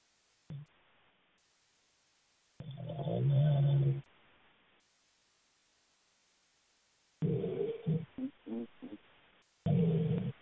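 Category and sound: human body sound, snoring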